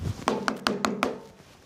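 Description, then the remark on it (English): Five sharp knocks on a door in a quick, steady rhythm, fairly loud with a hollow wooden thud, then silence. “And that night, another terrible knocking at the door.”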